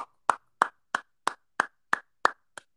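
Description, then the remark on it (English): A single person claps their hands about eight times in a steady, evenly spaced rhythm, the sharp slaps clear with silence between them and no voices. “That's my natural reaction is to applause.”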